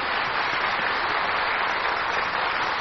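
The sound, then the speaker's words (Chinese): An audience of guests applauding warmly to welcome Master Ching Hai to speak, a dense, steady wash of many hands clapping at an even loudness throughout, with no one speaking over it. “现在请各位来宾以最热烈的掌声恭请上清下海大师为我们开示。”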